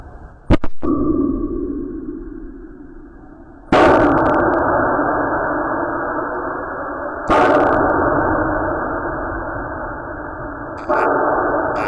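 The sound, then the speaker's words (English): An underwater recording of the Titan submersible implosion: a sharp initial crack of the hull cracking, then three heavy booms, the implosion and its echoes off the seafloor, spaced about three and a half seconds apart, each followed by a long, muffled, low rumbling decay. No voices. “Audio Of the Titan Implosion”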